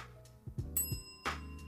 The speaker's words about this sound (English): Can you hear my bell this week? Can you hear my bell?